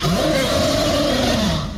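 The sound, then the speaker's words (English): During a dice-rolling game, a person voices a tail-swiping monster's mighty roar: one loud, growling, sustained gravelly bellow lasting about two seconds that holds steady and then tapers off at the end. “Now, as it does this, it lets out a mighty roar.”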